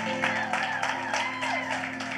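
A church audience claps in a dense, steady patter, praising God after an announcement about the church's finances, with scattered voices calling out and cheering over it, all above a constant low hum.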